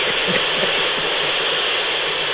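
Rick's dial-up modem connecting to the internet, heard as a loud, steady wash of harsh hissing static with faint warbling tones on top, running unbroken for a couple of seconds with no voices.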